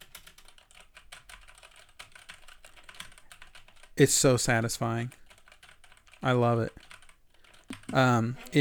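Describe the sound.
Rapid clacky typing on a mechanical keyboard, a dense stream of crisp key clicks for several seconds, not loud, followed by a woman talking.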